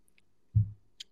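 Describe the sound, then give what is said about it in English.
A quiet first sip from a glass of water infused with strawberries, oranges and lemon: one soft, low gulp in the middle, with a few faint clicks before and a brief sharp tick after. No one speaks. “Gotta swerve up all the fruits inside of the water. First sip.”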